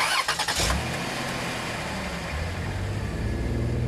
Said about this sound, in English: OK, so we'll just start the car.